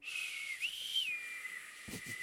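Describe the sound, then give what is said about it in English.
A person whistles a short melody, a few sustained notes with a gentle rise and fall, steady and fairly clear over background hiss, ending with a couple of soft low thumps. “You went for the whistle and you got the...”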